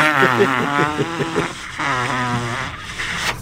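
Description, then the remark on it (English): A Niners fan blows wet, buzzing raspberries with the mouth, a string of sputtering fart noises that rise and fall in pitch over a few seconds, fairly loud, with a brief pause in the middle. “We have a Niners fan who's turning red by making fart noises.”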